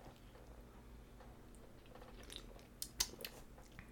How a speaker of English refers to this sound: I'm going to have to take a couple sips of this. There are so many flavor profiles going on in my mouth right now.